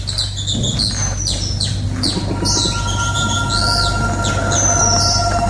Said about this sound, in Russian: Что это? Птички поют